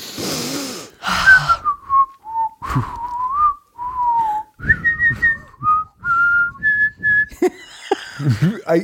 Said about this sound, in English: My whistle is bad today, but it's also because embarrassing.